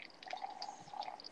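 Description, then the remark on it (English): Boiling water is poured into a cup in a steady, faint trickle, with a thin ringing tone and soft bubbly splashes that continue for just over a second. No one speaks. “I'm pouring boiling water in my cup.”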